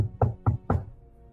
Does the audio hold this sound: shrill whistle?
no